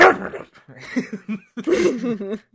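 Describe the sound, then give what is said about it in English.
A person vocally imitates the retro 8-bit cry of the Pokémon Snubbull, carried over from Gen 1 and 2: a few short, buzzy, yelping bursts with wavering pitch, somewhat dog-like, like a pixelated sneeze, delivered loudly with brief gaps between them. “from Gen 1 and 2 and stuff, like, they still have their old-ass 8-bit, like, sounds for cries.”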